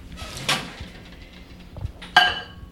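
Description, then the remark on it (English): A microwave door clicks open with a sharp clack, a soft thud follows, then the door snaps shut with a bright, ringing latch sound, all without voices. “Into the microwave.”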